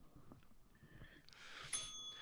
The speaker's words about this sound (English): Ring the bell